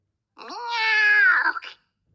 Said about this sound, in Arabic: عادت القطة المشاكسة. هل هذه قطتك؟